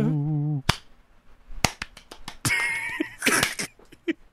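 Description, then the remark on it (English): A handful of sharp, close hand claps land in an uneven rhythm, after a brief tonal wail at the start, with a stretch of rough, hissy noise mixed in between later claps. “That's clap boy.”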